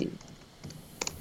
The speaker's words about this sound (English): But I can hear you typing. Like, it's very loud. I'll stop.